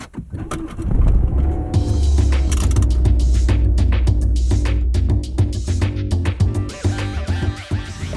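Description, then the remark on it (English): A car pulls away in the morning and keeps driving, its engine settling into a steady low rumble, with small clicks and rattles from inside the cabin throughout; the car is being driven for the first time in ages. “Off on my car for the first time in ages.”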